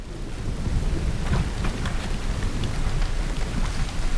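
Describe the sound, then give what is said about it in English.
A storm at sea roars steadily with heavy rain hissing across the whole clip, while deep thunder rumbles low underneath. No voices are heard. “You can't go back out there! That storm!”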